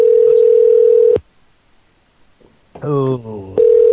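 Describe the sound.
A loud, steady telephone dial tone hums for about a second after the other party hangs up, then cuts out into near silence. A brief voice-like burst follows before the flat, unbroken tone returns.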